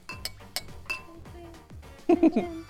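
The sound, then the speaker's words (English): A glass bottle clinks against glass a few times in a toast, quick, bright, ringing taps, followed by a brief burst of voices. “How about you hit the bottle?”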